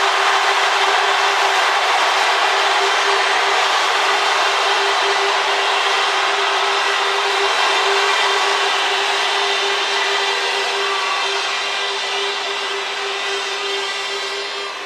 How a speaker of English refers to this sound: If you want Mixpak to win this round, on the count of three, scream, one, two, three.